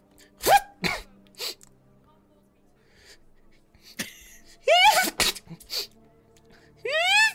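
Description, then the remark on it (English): A person vocally imitates a series of exaggerated sneezes, several short sharp bursts with rising squeaky wind-ups, loud, separated by brief pauses. “And as the third sneeze happens, there's a puff of blue smoke, and no.”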